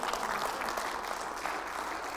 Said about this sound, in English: Oh, I think that deserved more than three hand claps.